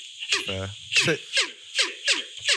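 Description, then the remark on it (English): A person imitates an orangutan call with a rapid series of five sharp, descending squealing sweeps, fairly loud, with a short low buzzy grunt early on. “That orangutan sounds like he's really getting down low, boy.”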